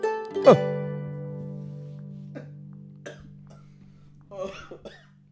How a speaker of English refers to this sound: That was a legit cough.